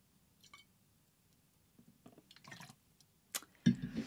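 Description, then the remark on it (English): Liquid pours and drips in a few soft, irregular splashes as a drink is being poured, ending with a louder spill of fluid splattering onto a surface. No one speaks. “Good thing there's not much sugar in this because I just dripped it everywhere.”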